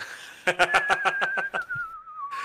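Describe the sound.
A person whistles one long, steady note that slowly glides lower in pitch, while a burst of rhythmic, breathy laughter runs over the first half of the whistle.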